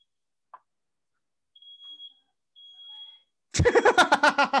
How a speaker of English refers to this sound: Don't mind that. That's my wife smoking weed in the bedroom, setting off the smoke alarm. I apologize for that right now.